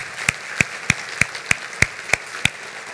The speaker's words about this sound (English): Give you a great big round of applause.